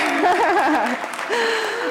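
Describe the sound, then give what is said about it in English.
An audience at an Alcoholics Anonymous talk claps in a steady, dense wash of applause, with a warbling cheer rising and falling over it, followed by a sustained whoop near the end. “That deserves a clap.”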